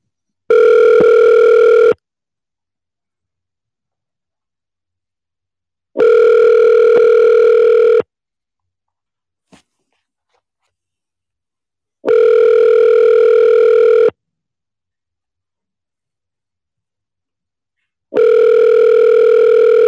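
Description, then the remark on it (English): A telephone ringback tone from a call being placed to a phone number sounds four times, each steady buzzing tone lasting about two seconds and separated by long silent gaps, clear with no talking. “I'm putting in the number as we speak.”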